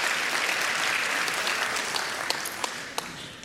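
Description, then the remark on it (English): A crowd applauds steadily, a dense wash of clapping that holds at an even level, with a few sharper individual claps popping out near the end as it begins to thin. “Hey, give a big round of applause.”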